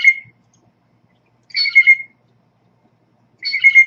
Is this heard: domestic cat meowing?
no